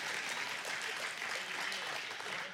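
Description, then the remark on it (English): Soft, polite golf-style clapping from a small group, a steady patter of claps running continuously without a break, fairly quiet and with no voices over it. “Okay, just to make that clear, I got a couple claps. Thank you so much. I think they were golf claps. It was like a golf clap.”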